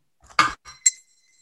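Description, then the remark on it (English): A small bell is struck in three quick metallic hits to end a three-minute round, the last hit bright and ringing out briefly with a thin high tone before fading. No voices. “Bell comes in and we're on to the next round.”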